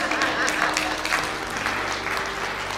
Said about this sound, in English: You guys could clap for that.